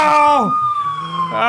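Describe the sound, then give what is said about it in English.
The sirens of several police cars upstairs wail loudly with a harmonic tone that sweeps down, holds a steady high pitch, then climbs again, overlapping in a continuous blare. “How are all these cop cars upstairs?”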